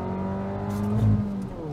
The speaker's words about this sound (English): You know, it's really quite difficult to make a car for the street that also feels kick-ass on a track. Listen to this.